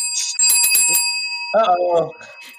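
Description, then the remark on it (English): A bright bell rung to signal time rings out, its clear metallic tone sustaining through the whole moment, while a voice briefly speaks underneath the lingering ring. “So I tried not to get the bell rung.”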